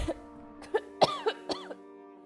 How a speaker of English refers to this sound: She laughed, and blood gurgled up out of her mouth, causing her to cough again.